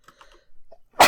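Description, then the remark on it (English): A single loud sneeze bursts out near the end, preceded by a few faint breathy sounds, with no talking. “Bless you. Thank you.”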